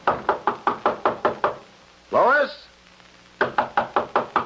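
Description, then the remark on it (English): A rapid, steady series of loud knocks on a door, pausing while a man calls out once, then the insistent knocking resumes. “Come on, open the door.”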